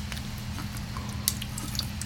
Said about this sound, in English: And then, let me take a sip.